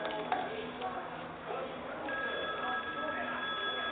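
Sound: telephone ringing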